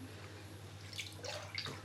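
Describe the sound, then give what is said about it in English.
Soft watery drips and small splashes from a hand moving in muddy water come in a few brief bursts over a low steady hum, fairly quiet. “The water is muddy as...”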